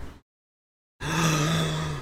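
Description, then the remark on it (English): A single drawn-out yawn with a low, steady voiced groan running through it, rising suddenly out of silence and holding for about a second. No one talks. “All I did was yawn.”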